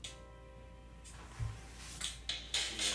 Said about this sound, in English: There's a guy standing with an urn, opens the door, and you can hear him walking.